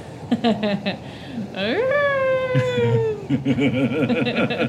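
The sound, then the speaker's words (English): A person imitates a wolf's howl: the voice swoops upward, then holds a long, slowly sinking tone for over a second, with brief talking and vocal murmurs before and after. “So I feel like this howl, like, burbling up.”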